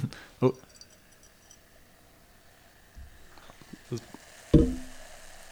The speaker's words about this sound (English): Oh. Wow. Those bubbles are angry. That is awesome.